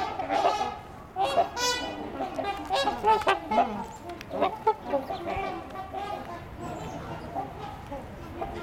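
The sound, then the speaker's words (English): Canada geese honking repeatedly outdoors, a run of loud, nasal calls in uneven bursts that overlap at times, with quieter honks continuing in the background. “There's a couple of Canada geese here, too.”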